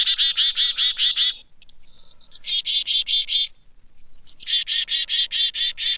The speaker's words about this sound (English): When chickadees see a goshawk, owl, or some other winged predator, the birds issue an alarm call.